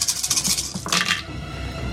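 Dice clatter and tumble across a plastic 3D-printed dice tray in a quick burst of sharp, rattling clicks lasting about a second, then settle down to quiet. No one speaks.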